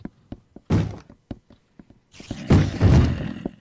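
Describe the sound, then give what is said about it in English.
A video game monster in creative mode thumps repeatedly on a door, trying to bust through: a quick, irregular string of dull knocks broken by a few heavier, rougher bangs, fairly loud, with no talking. “I don't know if they can bust through doors in creative mode.”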